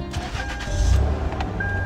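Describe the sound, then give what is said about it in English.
The engine of an abandoned car found by a highway idles with a steady low rumble that swells slightly midway, accompanied by a thin high-pitched electronic tone that comes and goes. “Engine sounds good.”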